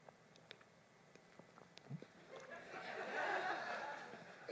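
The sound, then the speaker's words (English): A voice imitates a cow chewing its cud, starting with scattered wet mouth clicks and smacks, then swelling into a louder, sustained slurping, grinding mouth noise. “There's what's called rumination, which is where you just sit there and like a cow chewing its cud.”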